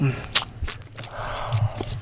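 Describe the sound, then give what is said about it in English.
Close-up eating of homemade German chocolate cake: soft, wet chewing and smacking mouth sounds with a few sharper clicks, moderately loud, a steady munching rhythm over about two seconds. “This is me eating some German chocolate cake that my grandma made.”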